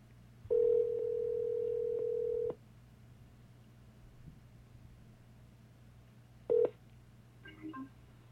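A phone call placed by voice command to a contact connecting: a loud, steady low electronic ring tone holds for about two seconds, then after a quiet pause a short beep sounds, followed by faint higher tones.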